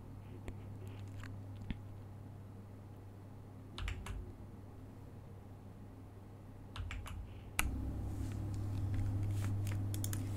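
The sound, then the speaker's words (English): Crisp keyboard typing in irregular bursts of clicky keystrokes, with a few sharper louder key hits and a steady low hum underneath; no one speaks. “This one is another typing one.”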